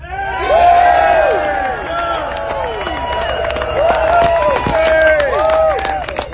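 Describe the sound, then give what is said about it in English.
A loud crowd cheers steadily for several seconds at the announcement that they will go on to the Beltway, many voices whooping and shouting over one another, with scattered claps woven through the roar. “Before you cheer too much, let me lay out the details.”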